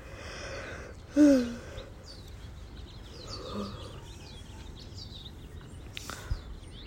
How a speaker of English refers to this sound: It's crazy. It's just every day this happens. Birds every day.